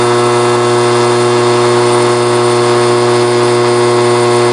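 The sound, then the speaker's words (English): A vibrating electric football game board, meant to move plastic magnetic players, hums loudly and steadily, a rough, even mechanical buzz with rich harmonics that holds without change for several seconds and has no voices over it. “It was a vibrating board, and that vibrating board caused the players to ideally simulate the play of the football by blocking and breaking through towards the end zone.”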